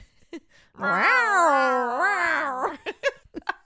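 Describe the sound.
A person imitates the hiss of a legendary giant lizard-like creature, voicing a long, wavering cat-like yowl lasting about two seconds, loud, followed by a few short, sharp vocal bursts.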